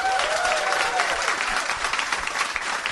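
An audience claps steadily for those who have seen the film Die Hard, a dense, sustained wash of many hands with a faint whistle or cheer rising early on, holding at an even loudness throughout.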